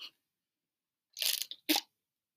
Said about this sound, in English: Now that you've all heard me take a sip of my lovely iced tea, we can... Actually, I'm going to take another sip.